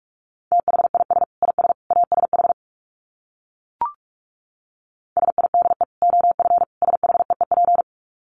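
Fast Morse code at about 45 words per minute: a steady mid-pitched tone keyed in rapid dots and dashes, sent in two runs split by a short pause with a single click between them.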